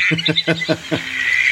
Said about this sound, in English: Then the other one that you're talking about, the Pacific black duck, which is the one most people recognize, which is this one.